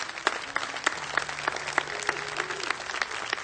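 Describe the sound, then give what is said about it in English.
An audience applauds a Catholic bishop with dense, steady clapping that holds at a moderate level for a few seconds, with individual sharp claps standing out in the wash and no voices on top. “That's what that Catholic bishop did, and I think he deserves a good round of applause too, don't you?”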